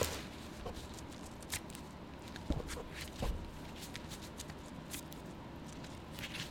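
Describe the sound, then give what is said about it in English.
Soft riffling and sliding of playing cards being shuffled, with a steady papery rustle and a few sharper snaps, heard alone without any talking. “Here's the shuffling ASMR.”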